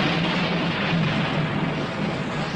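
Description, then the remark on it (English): Thunder rumbles steadily through a storm scene, a dense, continuous roar with a deep low drone beneath it that holds at an even loudness throughout, with no voices. “She said there was an earthquake, and for some reason, thunder is playing.”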